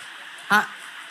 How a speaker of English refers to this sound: The rain is louder than the clapping.